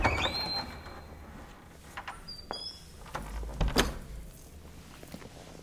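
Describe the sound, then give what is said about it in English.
A door closes: a brief creak at the start, a few soft clicks and shuffles, then a low muffled thud as it shuts, with no talking. “Go with him. And close the door.”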